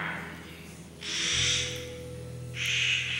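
Two harsh, grating Clark's nutcracker calls, each a drawn-out rasping screech lasting nearly a second, fairly loud and close, over a low steady background hum.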